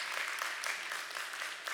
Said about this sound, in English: And yeah, that's worth clapping for. Jesus rose from the dead, amen.